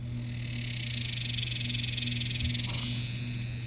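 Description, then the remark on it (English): A dog day cicada sings a loud, sustained, high-pitched buzzing drone that swells in the middle and eases off toward the end, with a steady pulsing texture throughout and no voices. “which is very different from a dog day cicada.”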